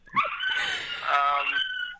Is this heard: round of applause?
no